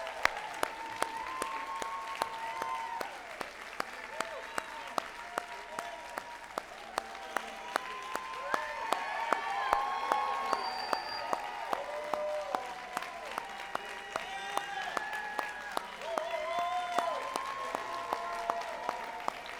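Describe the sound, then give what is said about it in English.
Sustained applause from a large audience welcoming the first class of students of a school of ministry, who have come down to the front; a dense wash of clapping that swells slightly midway, with scattered cheers and voices mixed in throughout. “So would you help me welcome our first class of Maranatha School of Ministry students?”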